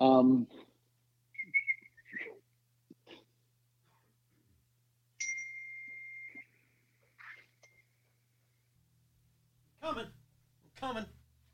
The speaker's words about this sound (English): I tried to whistle, but it wasn't successful.